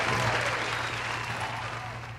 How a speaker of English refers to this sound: Round of applause. Appreciate that. Appreciate that.